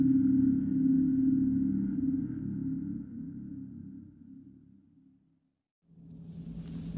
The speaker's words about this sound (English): What is the hum? I don't know. I have thought it may be some kind of resonance, but it would still need some... I don't remember the word... thing to make it happen.